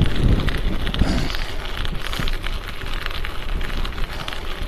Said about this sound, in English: And when it's actually it's kind of clear right now, but man, it's super windy. I hope the audio isn't horrible on this one, guys.